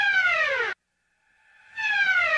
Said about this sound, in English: And that strange noise is the sound of the unsacking siren, because we signalled the sacking siren, its very different counterpart, its brother siren.